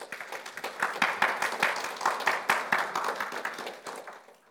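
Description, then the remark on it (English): A crowd breaks into steady applause, many hands clapping at once in a dense, sustained patter that swells and then gradually thins out toward the end. “Would you give her a round of applause, please?”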